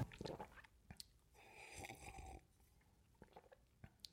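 A sip of wine from a glass: soft lip smacks and clicks, then a second-long slurping draw of liquid, followed by a few quiet mouth noises. No one speaks.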